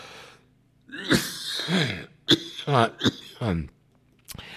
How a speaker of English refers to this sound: Wow. Excuse me. Let me cough this out.